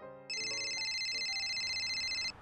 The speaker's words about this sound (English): Let's ring him now. It's ringing.